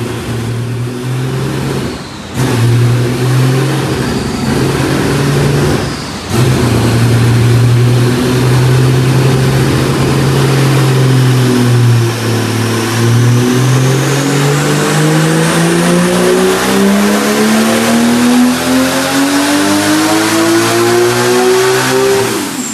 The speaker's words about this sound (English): All right, we got a little dyno action on the 935 just because I want to hear it.